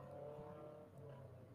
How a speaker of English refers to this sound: Very loud traffic in the background.